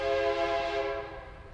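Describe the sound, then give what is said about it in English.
A passing train sounds its horn in one long, loud, steady blare over a low rumble, the tone gradually fading as the train moves on. No one speaks. “Oh, here comes a train.”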